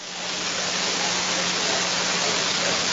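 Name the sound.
light rain falling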